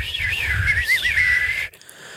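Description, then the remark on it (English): A breathy, slightly raspy whistle from a person who cannot whistle the usual way wavers up and down in pitch for under two seconds, fairly loud over a low airy rumble, then cuts off abruptly. “I don't whistle the correct way. I can't whistle the way most people.”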